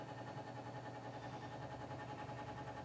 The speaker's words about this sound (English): Sorry, everybody, for the fan. I keep stopping because I hear the fan. Please. It is so hot in here. Yeah, if you guys have made it this far in the podcast, we do need to apologize because that fan is it's irritating me.